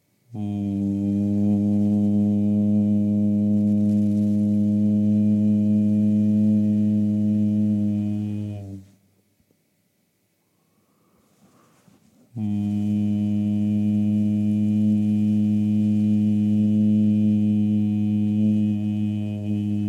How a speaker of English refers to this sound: I'm bringing my left hand over my right shoulder by the neck bone. And just bring a hum this time into that part of the body underneath the hand. So just humming lightly